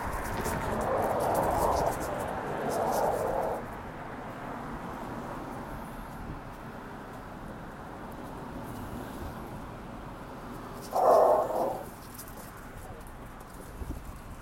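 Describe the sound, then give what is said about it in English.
A dog barks at a bigger, stronger dog, trying to attack it, in a few separate outbursts, two close together early on and one more later, over a steady outdoor street background. “Dog's trying to attack a bigger, stronger dog.”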